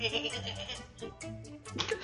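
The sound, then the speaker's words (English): A person mimics a sheep, letting out a few wavering, nasal bleats in quick succession, fairly loud, with no other talk around them. “Now, was that a sheep or a pig?”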